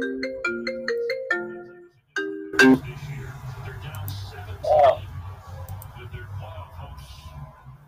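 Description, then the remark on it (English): A phone ringtone plays a bright, repeating melodic pattern for about two seconds, then cuts off; afterward people talk over a low hum with a couple of brief clatters. “Is that your phone”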